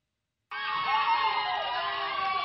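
After a half-second of silence, a crowd's cheering bursts in abruptly and holds steady and loud, a dense wash of high excited voices shouting together.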